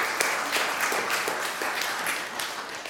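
A crowd applauds steadily for a few seconds, a dense, even patter of many hands clapping at once with no voices over it.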